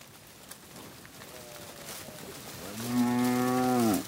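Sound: cattle mooing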